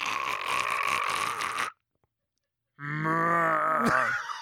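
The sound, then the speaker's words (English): A person imitates a koala's grunting call in two loud, close bursts: first a rough, snoring-like rasp, then after a short silence a deeper, droning groan that wavers in pitch. “Who's got a better koala noise?”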